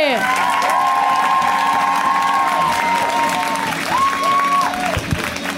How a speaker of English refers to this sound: This next comedian, it's also their first time on the show, so we're going to give them also a big, warm round of applause, right? We're going to get it started right now.